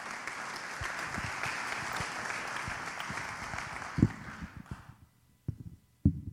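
A crowd claps steadily in a dense, sustained burst of applause that tapers off toward the end, leaving a few scattered final claps and thumps.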